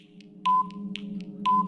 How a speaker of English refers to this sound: Yeah, that'll do. That's an old 10-second timer I've got from something else. Either we've done or Back of the Grid's done or something. It's a sound effect I have in my library of sounds, so that'll do.